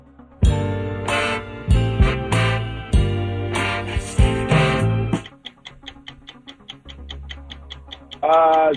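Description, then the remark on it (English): Loud, punchy band music with strong bass and brass-like stabs plays in bursts, then drops to a steady ticking pulse counting time before a rising flourish at the end, as the 60-second clock of a game show starts. “60 seconds on the clock for the first time in 2023. The time begins when Paul plays our music.”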